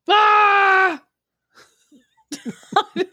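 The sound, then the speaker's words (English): A loud, sustained scream rings out for about a second, then cuts off; after a short quiet gap come several choppy, breathy vocal bursts that sound like laughter. “Just scream.”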